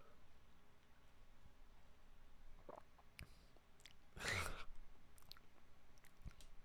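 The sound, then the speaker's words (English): A short slurp of the last two gulps of lukewarm cold brew coffee, preceded by faint mouth clicks and swallowing sounds. “And then I slurp it down, and it's always disgusting. So might as well do that on the podcast in front of you.”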